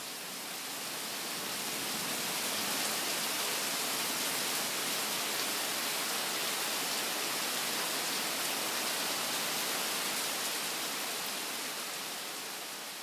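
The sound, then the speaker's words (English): Heavy rain from a huge storm that suddenly rolled in pours down in a dense, steady roar of hiss and patter that holds evenly for the whole stretch, with no voices or other sounds breaking through. “And within an hour of my getting back home, it literally looked like it was nighttime outside because a huge storm rolled in, and then all of a sudden it just dumped.”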